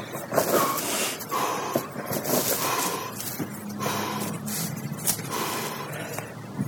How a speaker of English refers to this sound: So you gonna try your Wim Hof breathing? That's what I'm doing. Pretty sure you're supposed to breathe a little bit slower than that. I'm getting lightheaded.